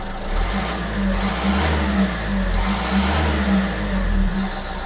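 A car engine runs loud, rumbling steadily before revving up twice with rising whines. No voices, just a continuous throaty drone for about five seconds.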